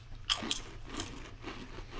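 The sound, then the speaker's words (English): Crunching of crisp Bugles corn snacks being bitten and chewed right into the microphone, with a couple of sharp bites near the start followed by rhythmic, crackly chewing. “This is good for crunching sound.”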